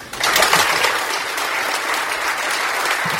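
A crowd applauds steadily, a dense wash of many hands clapping at an even, fairly loud level that starts abruptly and holds throughout.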